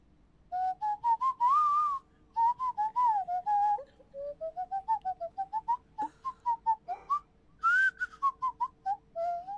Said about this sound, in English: This is called a nose flute. Oh my, what? Yeah, and you literally blow your nose through it.